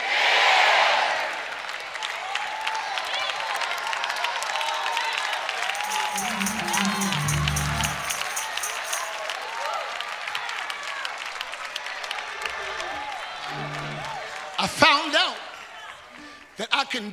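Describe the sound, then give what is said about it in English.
A church crowd cheers and screams loudly over steady applause as a preacher urges them to jump up and scream, a dense roar that holds for the whole stretch, with a few low thumps midway and sharp bursts of noise near the end. “Somebody jump up and scream, live!”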